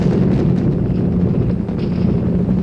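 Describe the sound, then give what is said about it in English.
A loud, continuous roar of a rocket launch as the rocket rises into the clouds at 3,000 feet, shaking a building and its big glass window; a dense low rumble with crackling texture that holds steady and unbroken from start to finish, no voices cutting through. “Look at that rocket go into the clouds at 3,000 feet!”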